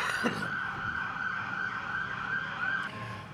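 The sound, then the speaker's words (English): An emergency vehicle siren wails on a steady, high, sustained tone over low rumbling traffic noise, fairly loud, with no one speaking. “So I'm going to let this siren go by.”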